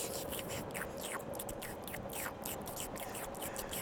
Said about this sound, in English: No, I'm just licking the rim of the glass, slurping on it. He's very weird. I wish he would stop doing that.